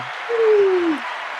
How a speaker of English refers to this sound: Hit him with the applause. Hit him with the applause. Okay, here we go.